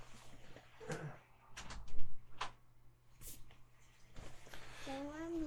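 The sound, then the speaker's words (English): A young girl bangs on a door, several irregular, fairly loud thumps spread over a few seconds, with a low steady hum underneath and a voice speaking briefly near the end. “you'll have to excuse me for a moment while my daughter bangs on the door.”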